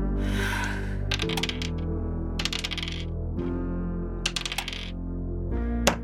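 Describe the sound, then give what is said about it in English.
Dice clatter and tumble across a tabletop in several quick bursts, with bright rattling clicks over a steady low hum, moderately loud. “Hate this dice.”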